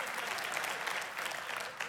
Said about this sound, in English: Yeah, the 9 o'clock crowd clapped right there.